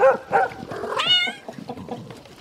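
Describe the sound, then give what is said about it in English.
Several cats meow in quick succession, one drawn-out and high-pitched, followed by a flurry of short, overlapping yelps and barks from dogs, all fairly loud with no talking. “I think the dogs and cats ate it.”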